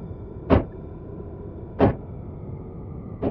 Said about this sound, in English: There was only one other prisoner like me I ever spoke to. But I never saw them. Not even their ether patterns. Why? We only ever spoke through the wall. Not spoke. We'd knock. Morse code.